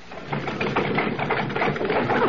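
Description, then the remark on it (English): An omnibus rumbles as it pulls up and stops before a shop door, a steady, rhythmic mechanical clatter with a low engine-like drone holding at an even level throughout, with no voices. “Bless my soul, the omnibus. And stopping before my shop door.”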